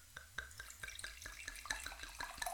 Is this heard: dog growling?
no